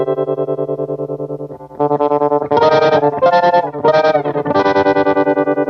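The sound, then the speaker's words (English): Electric guitar chords pulsing through a Boss TR-2 tremolo pedal, the volume throbbing in a steady, fast rhythm. A sustained chord gives way to brighter, louder strummed chords that keep the same choppy wobble, with no talking. “Classic Boss TR2 trem.”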